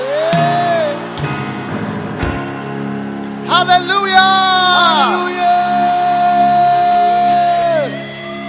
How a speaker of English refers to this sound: And everyone shouted, Amen.